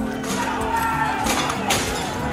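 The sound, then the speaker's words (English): Windows shattering in a few sharp, crashing bursts amid a loud, steady roar of a shouting crowd, with glass breaking and clinking throughout, as Trump supporters storm the U.S. Capitol. “And at this time, 1 year ago, Capitol Police were evacuating Congress as Trump supporters shattered the first windows as they stormed the U.S.”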